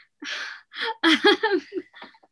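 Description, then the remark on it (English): Two quick, breathy sneezes, followed by a short burst of voiced, laugh-like sounds that trail off. “Bless you. There's always two.”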